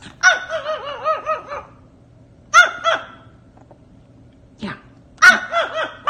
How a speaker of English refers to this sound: And we made even more dog friends, such as Cody right here.